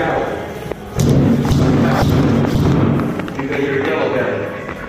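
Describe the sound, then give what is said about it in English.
Heavy kicking thuds land in an irregular series of dull, low impacts, loud and echoing in a men's restroom at a Planet Fitness, with muffled voices talking underneath throughout. “More kicking.”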